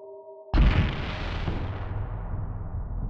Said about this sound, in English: A bang that sounded more like an explosion erupted.